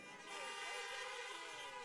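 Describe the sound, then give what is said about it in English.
Several car horns honk together in a loud, sustained chorus of overlapping tones, honked by churchgoers in their cars in response to "He is risen" during a church service, holding steady for a couple of seconds with a hint of voices underneath. “we want you to honk your horns in response to say, "He is risen indeed."”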